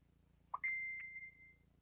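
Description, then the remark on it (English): A short electronic chirp followed by a single sustained high-pitched beep that fades out over about a second, a mobile phone notification, heard alone against a faint low hum. “Silence your damn phone.”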